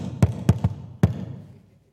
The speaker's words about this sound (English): This is a timid knock. This is my historic knock. I've always knocked this way.